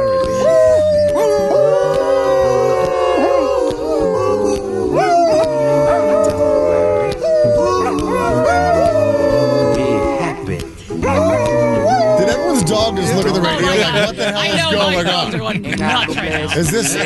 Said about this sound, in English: Dogs could sing along with it too. That's what it sounds like.